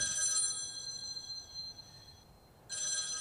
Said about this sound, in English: That's the loudest phone I've ever heard.